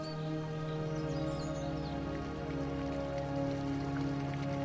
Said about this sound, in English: And in a quiet corner, you can hear a fountain singing.